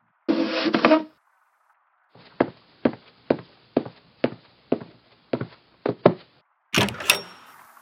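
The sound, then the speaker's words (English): A brief rattle, then about nine firm, evenly spaced knocks on a door, followed by the door swinging open with a noisy scrape. No one speaks. “Open this door now.”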